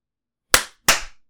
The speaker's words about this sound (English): Okay. I want to get the clap I want to get the clap done first so we don't forget it. Okay, here it goes.